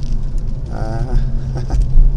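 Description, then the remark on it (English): Light rain patters steadily against a car window, a soft, continuous speckle of tiny taps over a deep, constant low rumble, with a brief tonal hum partway through. “It's a pitter-patter noise, and I realised it's the rain on the window.”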